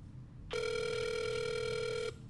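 A single steady electronic telephone ring tone from a call to a video game store sounds for about a second and a half, clear over a faint low background hum, with no one speaking.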